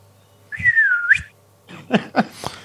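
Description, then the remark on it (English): A person imitates a French rugby referee's whistle with one sustained, gliding whistle, followed by a few short, sharp bursts of noise. “But as he's going to do the kick for touch, this French referee blows his whistle.”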